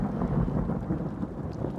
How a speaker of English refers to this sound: But in Japan during the summer, they are quite common. This sudden downpour helps give a feeling of refreshment and usher in a sense of evening cool.